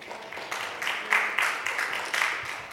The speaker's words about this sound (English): You can clap for that.